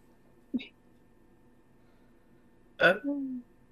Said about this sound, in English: I just burped. That was very elegant. Very elegant.